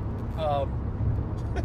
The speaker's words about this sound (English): that was great. That's what the engine sounded like. Boof. Some Acura or something.